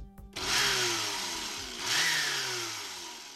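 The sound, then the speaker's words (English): A voice imitates a lab blender with two loud, breathy whirring bursts, the buzzing pitch sliding down and then rising again in the second surge before fading out. “That was a good blender impression.”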